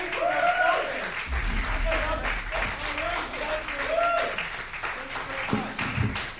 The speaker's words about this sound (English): Thank you very much for coming, everybody. That was great. Yeah. Thank you very much. Let's round of applause